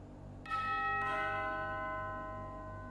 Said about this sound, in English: You ring the doorbell